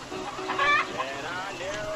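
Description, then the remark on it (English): Several Barred Rock and Rhode Island Red chickens cluck and squawk, a burst of harmonic calls around the middle and softer murmuring clucks continuing throughout, with faint background chatter. “we got these real cute bar rock chickens here”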